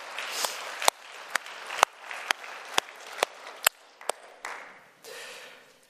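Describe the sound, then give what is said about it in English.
An audience claps, with a steady wash of applause punctuated by sharp, evenly spaced louder claps roughly twice per second, lasting several seconds before tapering off. “Hey, you can clap for that.”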